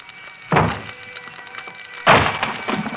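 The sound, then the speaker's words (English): At dawn, firemen swing axes at the locked door of a burning apartment: two heavy blows strike the wooden door about a second and a half apart, each a loud splintering thunk, over a steady low background hum. “Outside its locked door, firemen swing their axes at.”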